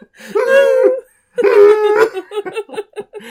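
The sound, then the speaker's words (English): A human voice imitates hound dogs: two long, drawn-out baying howls, loud, then a run of short, choppy yelps that sound like laughter. “There were at the time of this here recording, there were 2 hound dogs setting each other off at the park today.”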